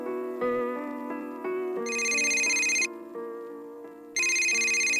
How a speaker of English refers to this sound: The phone rang at the Eldridge's and Aaron picked up.